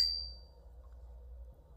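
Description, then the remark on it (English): Glasses clink together once in a toast, a bright ringing chime that fades over about half a second, with a low steady hum underneath and no talking. “We're going to cheers to me being the crier of the group.”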